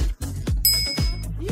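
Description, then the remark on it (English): A single bright notification bell dings once, ringing clearly for about half a second over a steady, bass-heavy music bed before stopping abruptly. “Subscribe to us at OWWR and don't forget to hit that bell.”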